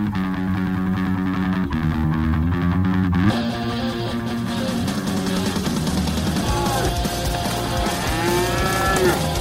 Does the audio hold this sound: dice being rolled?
no